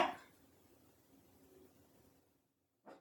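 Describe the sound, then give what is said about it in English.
A dog barks once sharply at the start, then after a quiet stretch of low background murmur, a second short bark comes near the end; both are brief. The barking comes from the speaker's own dogs. “Be quiet. My dogs.”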